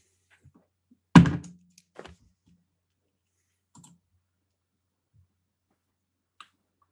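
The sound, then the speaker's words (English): Dice are rolled for a perception check in a tabletop role-playing game, dropping onto a tabletop with one sharp thunk, then a few light, scattered clicks over several seconds as they settle. No voices. “That depends on how the dice roll, my friends.”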